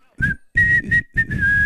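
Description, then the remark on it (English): Someone whistles a short, low tune in four breathy phrases separated by brief pauses, the pitch wavering and sliding slightly with audible air noise around each note. “Oh well, no, it sounds bad because you're doing it. You're bad at whistling.”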